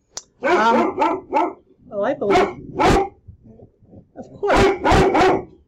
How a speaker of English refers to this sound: What is he barking at? Can you see? Hush!